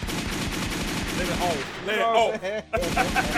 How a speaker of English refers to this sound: Let's get them gunshots for that idiot.